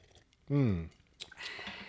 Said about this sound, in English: Very good. We're sipping.